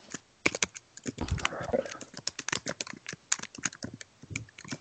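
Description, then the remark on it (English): Rapid, irregular clatter of typing on a computer keyboard, fairly loud, with short bursts of keystrokes and brief pauses over several seconds. “Nah, sorry, that's me typing.”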